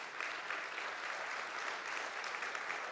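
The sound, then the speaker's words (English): Steady applause from an audience of parents, many hands clapping in a dense, continuous patter at an even level for the whole stretch, with no voices standing out. “Those are parents clapping that didn't kill their children and are enjoying grandchildren.”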